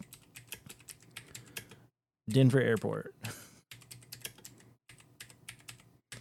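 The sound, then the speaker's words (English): Slow, uneven hunt-and-peck typing on a computer keyboard as Denver Airport is searched on Google Maps, with moderately loud, irregular individual key clicks, broken by a brief spoken phrase from a man in the middle before the pecking resumes. “You were chicken pecking the crap out of that keyboard, buddy.”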